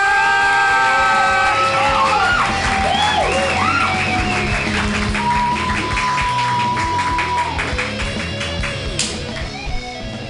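A crowd bursts into loud, sustained applause mixed with cheers, whoops and shrill whistles, the clapping holding steady for about ten seconds before starting to taper off.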